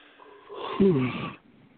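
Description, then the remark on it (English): A drawn-out yawn into a microphone, a breathy rise swelling into a low voiced groan for about a second before trailing off. “Keep yawning into my ear there.”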